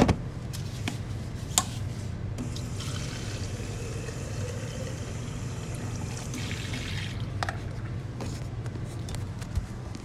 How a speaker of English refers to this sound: Give me a second here. I'm going to fill this water bottle.